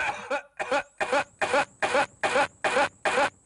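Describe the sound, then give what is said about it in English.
A loud, hacking coughing fit heard at the opening of a rock album track: about eight harsh, rasping coughs in quick, evenly spaced succession, with no talking around them. “I'm going to play you that cough now, because I think I can get away with that.”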